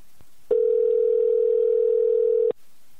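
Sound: telephone call tone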